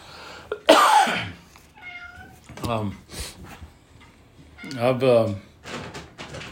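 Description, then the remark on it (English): A wet cat that has just come in from outside meows loudly several times indoors, with drawn-out, wavering cries and a short chirp, while a person's voice briefly sounds in the background between the calls. “No, Cat, get out of here.”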